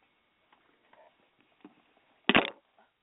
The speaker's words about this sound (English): Okay. to blow my nose. Forgive me, y'all. 1 second.